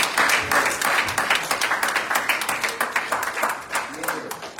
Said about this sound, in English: It is midnight, and the whole year is gone. Yeah. Put your hands together, give God a hand clap of praise.